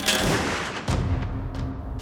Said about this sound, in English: Then, he heard a gunshot.